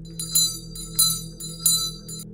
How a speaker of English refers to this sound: Whatever it was facing my direction, and I could see it pull on the thread, making the bell ring as it stared at me with eyes I couldn't see.